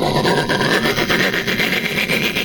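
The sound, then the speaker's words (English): A sound effect of a train approaching: a loud, continuous rasping rush with a quick, regular chugging pulse that holds steady throughout, with no voices. “What was that? The sound of a train approaching.”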